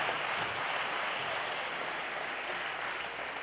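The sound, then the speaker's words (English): An audience claps their hands unto the Lord together in a dense, steady wash of applause that holds at an even loudness throughout, with no voices standing out. “Clap your hands unto the Lord that you're giving me 3 more minutes.”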